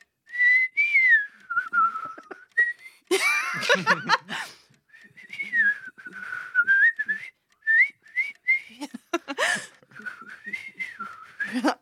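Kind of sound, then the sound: human body sound, person whistling a tune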